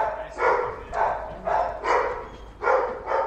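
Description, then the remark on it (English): A dog barks over and over in a steady rhythm at an animal rehoming centre, about six loud barks in quick succession, with a faint busy background behind it and no one talking. “There are lots of dogs and cats here looking for new families.”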